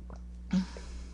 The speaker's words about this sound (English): And, I just had to take a sip of water. Just give me a second.